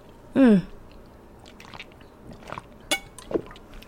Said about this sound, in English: Oh my gosh, I almost choked on that. I almost choked on that water. I don't know what's happening.